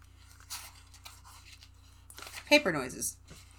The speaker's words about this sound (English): Paper noises.